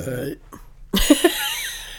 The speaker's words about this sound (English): Damn. That was a good burp, dude. It was funny.